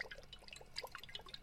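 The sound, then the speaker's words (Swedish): Two tablespoons of rapeseed oil being poured into a frying pan for frying tofu, heard as a quiet, uneven patter of small drips and splashes over about a second and a half, with no talking. “Ja, det är i rapsolja. Jajamän. Två matskedar rapsolja. Jag häller upp.”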